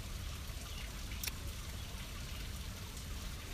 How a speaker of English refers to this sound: Right. Well, I think that waterfall makes our dripping tap seem quite lame. Yeah, but it's steady, that, isn't it? It's a background, it's just ambient.